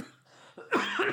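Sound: coughing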